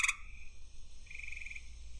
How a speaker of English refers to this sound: And then what was the other one? A gray tree frog? Gray tree frog. Gray tree frog call. Okay. And here is that one.